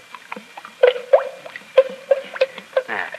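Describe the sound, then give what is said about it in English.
Thick liquid paint glugs out as it is poured for mixing colors, in a quick, uneven series of about seven hollow, bubbly gulps, moderately loud, ending with a brief splashy gush. No voices are heard. “You notice when you pour the paint out how it goes glub, glub, glub?”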